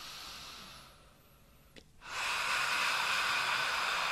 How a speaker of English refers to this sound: And then there are two breathing techniques. One is ha breath. You just breathe in through your nose.